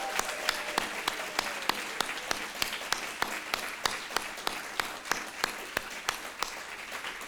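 A crowd applauds steadily for several seconds, a dense wash of clapping with sharper, evenly spaced claps standing out in a quick, regular rhythm. No one speaks over it.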